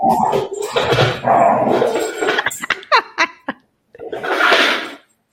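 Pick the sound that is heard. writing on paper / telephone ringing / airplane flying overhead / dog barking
dog barking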